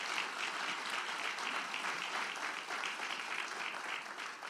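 An audience at Nortonsville Church of God applauds in a dense, steady wash of many hands clapping, sustained at an even loudness for several seconds with no voices over it.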